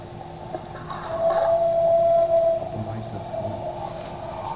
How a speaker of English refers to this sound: So now this is an alpha male and a mountain lion responding. And I may stop it early just so we can get through these.